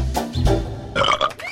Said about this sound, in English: Well, I can make all kinds of noise. It's especially fun to burp.